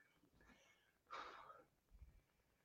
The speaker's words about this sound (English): Obviously, maybe there's something you need to say, clearing your throat. Maybe something's coming up if we look at the throat chakra.